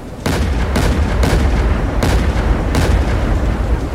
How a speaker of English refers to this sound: I could barely stay upright, the wind was so goddamn strong, but my target was hard to miss. I just planted myself against the storm and pulled the triggers, as fast and as often as I could.